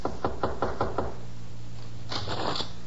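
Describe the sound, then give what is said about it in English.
Five quick, evenly spaced knocks on a wooden bedroom door at 2 a.m., fairly loud, followed by a short pause and a softer rustling sound. “Then he stumbled to the door of Joy's room and knocked.”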